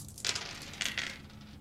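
A player rolls the dice in front of them; the dice clatter across a table in a few quick rattling bursts, sharp, with small hard clicks trailing off as they settle.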